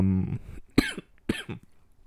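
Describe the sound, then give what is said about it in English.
Two sharp coughs roughly half a second apart, each a harsh burst trailing into a rough, throaty tail, with a brief tonal vocal sound just before the first one. “Oh, excuse the coughing.”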